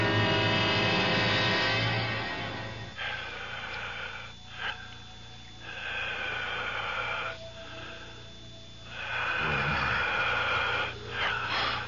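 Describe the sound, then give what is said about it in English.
Heavy, wheezing breaths swell and fade in slow, uneven waves, loud, with raspy sniffs and snorting exhales and a low hum underneath, giving an eerie, enveloping feel as if the whole room were breathing. No one speaks. “It sounds like the whole room is breathing. I can hear it breathing.”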